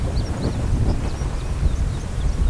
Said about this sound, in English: So that's a big chunk of a mountain sliding down.